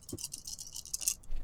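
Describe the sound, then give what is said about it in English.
A handful of dice rolled for an attack's damage clatter and rattle across a table in a quick burst of bright, overlapping clicks, fairly quiet, with no talking. “Listen to all them dice.”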